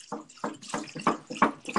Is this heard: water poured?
yes